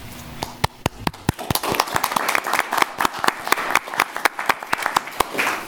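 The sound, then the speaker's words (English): An audience applauds steadily for the committee that hosts the St. John's Mexican Fiesta, many hands clapping in a dense, even patter with sharper individual claps standing out, moderately loud throughout with no talking. “So I want to give them a thanks and an applause to them, and thank you all for this honor.”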